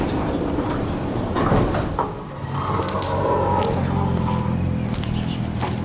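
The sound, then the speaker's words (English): Doors slide open with a steady mechanical rumble and airy whoosh, fairly loud, running continuously for several seconds with no voices. “Doors opening.”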